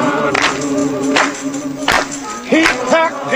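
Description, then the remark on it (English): A handful of sharp hand claps, about five, from someone trying to clap along to the rhythm, land at uneven intervals over steady background music, slightly out of step with the rhythm. “I felt like Steve Martin in The Jerk because I couldn't clap along to the rhythm.”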